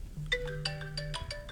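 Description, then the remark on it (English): A classic early iPhone ringtone plays: a bright, marimba-like melody of quick struck notes in a bouncy rhythm, with a low steady hum underneath and no one talking. “They got all the classic ringtones on here from like the first iPhone.”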